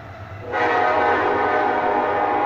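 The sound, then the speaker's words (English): A loud train horn kicks in about half a second in and blares steadily to the end, a harsh sustained tone layered over low rumbling rail noise. “That's amplification of a train.”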